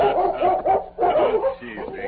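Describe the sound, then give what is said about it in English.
A large German shepherd named Chief barks excitedly in welcome while circling the horse Scout at the Circle M ranch in northern Texas, a quick run of loud, overlapping barks and yelps filling the moment with no pauses between bursts. “As Tonto dismounted, the Colonel's dog, a large German shepherd named Chief, circled Scout, barking a welcome.”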